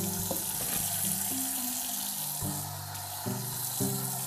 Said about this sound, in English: So, I have the tap running to make sure I'm not damaging anything that I can't see in the pipe.